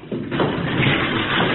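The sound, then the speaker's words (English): A heavy lead door grinds open on its track, a steady rumbling scrape that starts abruptly and keeps going for over a second without pause. “No, it's a heavy lead door. There's a lever.”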